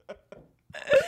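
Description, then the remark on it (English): Two short, soft guttural bursts are followed by a loud, drawn-out, rumbling belch, with no talking in between. “No, I pulled the burp away.”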